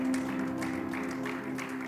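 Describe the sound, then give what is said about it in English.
An audience claps steadily as a clap offering to the Lord, in a dense, continuous patter, with a held low organ or keyboard tone sounding underneath the applause throughout. “Somebody give the Lord a good clap offering in the house.”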